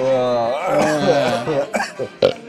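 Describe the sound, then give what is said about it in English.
A long, drawn-out belch after drinking beer, with a wavering, throaty pitch, then trails into two short, sharp bursts like coughs or chuckles. “Good beer. Burp beer.”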